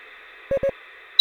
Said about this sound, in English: One beep for yes, two for no. Yeah? Okay, do it again. One beep for yes, and two beeps for no.